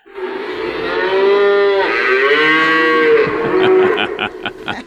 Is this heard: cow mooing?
yes